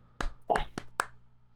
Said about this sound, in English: It only picked up on the first clap.